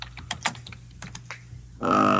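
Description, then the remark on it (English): Quick, irregular clatter of keys being typed on a computer keyboard, fairly clear, followed by a sudden louder sustained sound at the end. “I can hear the typing.”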